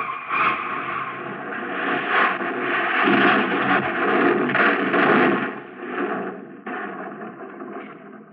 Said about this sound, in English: The car rolled off the jack and went into motion. I yelled just for effect, but it was only a few feet to the edge. The car shot over, hit a ledge about 20 feet below, and then crashed on down to the bottom.